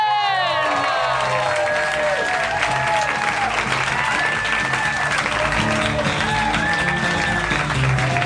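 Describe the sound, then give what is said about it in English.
A large live audience at a Harmontown show applauds and cheers loudly and continuously as Dan Harmon is welcomed, with whoops and high shouts rising above a dense wash of clapping that fills the whole stretch. “Wow, what a crowd. What a crowd.”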